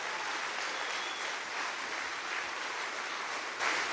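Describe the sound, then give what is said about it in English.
An audience at a Christian gathering claps steadily for a speaker, a dense wash of many hands blending into continuous applause that holds at an even level throughout, with no voices heard. “If you believe that, give him one more hand clap.”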